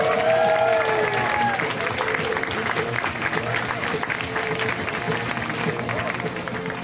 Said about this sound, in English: Please give a huge round of applause